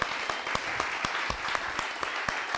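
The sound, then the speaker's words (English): Steady applause from an audience for Jim Kwik, a dense wash of clapping with sharper individual claps popping through at irregular moments, holding a fairly even loudness throughout. “Once again, let's applaud Jim Kwik real quick.”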